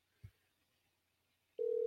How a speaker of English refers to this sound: Can you guys hear the phone call?